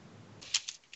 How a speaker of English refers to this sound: Hang on, I need to roll a dice real quick.